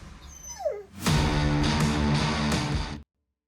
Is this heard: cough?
no